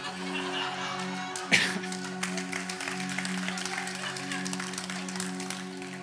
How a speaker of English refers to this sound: You clap for that.